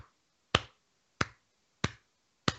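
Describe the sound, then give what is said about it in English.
Four sharp, evenly spaced slaps, about two-thirds of a second apart, as someone slaps their leg to imitate what a match at a show sounded like, each a crisp smack with a brief low thump and no talking. “It sounded like every other second there was a leg slap.”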